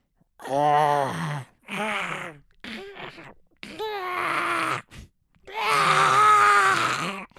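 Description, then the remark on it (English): A person does a raspy, squawking Donald Duck voice impression for a live-action Donald Duck role, in several bursts of garbled, nasal syllables, loud and strained, with short pauses between phrases and a longer final burst. “Have you been working on that voice? Yeah, okay, here we go.”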